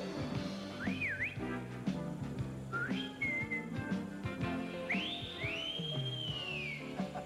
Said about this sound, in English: If I want him, I just whistle and my prince will appear.